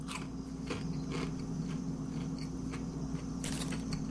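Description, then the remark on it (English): Crunching as someone bites and chews crisp KFC food dipped in barbecue sauce, a string of sharp, irregular crunches over a steady low background hum, with no talking. “Got a good crunch to it.”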